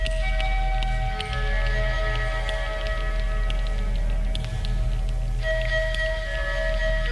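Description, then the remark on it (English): Cosmic octave planetary tuning forks, developed by mathematician Hans Cousteau, ring with several steady, pure tones layered together over a low, constant hum; the higher tones thin out midway, then a fresh strike brings them back bright and sustained. “Yeah, so these are the cosmic octave planetary tuning forks.”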